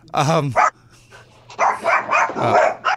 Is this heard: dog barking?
yes